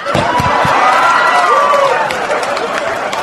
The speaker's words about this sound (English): I can't believe you clapped about that.